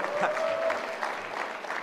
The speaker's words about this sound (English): Let's give her a round of applause for the yelling, yeah.